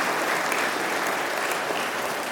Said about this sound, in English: Let's all give clap to Francina Foundation.